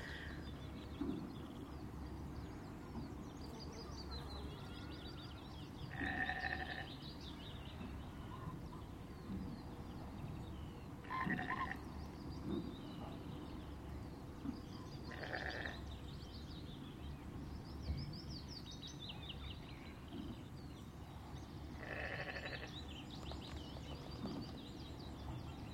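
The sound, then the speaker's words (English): Several willow warblers sing short, sweet phrases every few seconds over a steady low rumble of outdoor background noise. No one speaks. “I think there are several willow warblers singing.”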